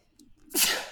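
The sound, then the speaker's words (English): A single sudden sneeze, fairly loud, with a brief sharp inhale leading into an explosive burst of breathy noise that trails off. No talking. “Bless you.”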